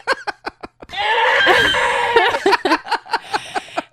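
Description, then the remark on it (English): A deer vocalizing: several short, sharp yelps lead into a long, loud, shrill wavering scream, followed by a quick run of piercing squealing bursts. “Well, it's also very alarming that is the actual sound that comes out of a deer.”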